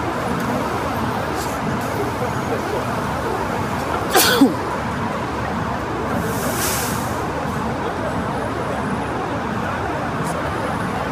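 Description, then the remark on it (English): A single sharp sneeze from allergies bursts out about midway, loud, over a steady wash of city traffic noise that continues throughout, outdoors at Bank and Albert streets in downtown Ottawa in light drizzle. “Probably hear me sneezing out here with the allergies.”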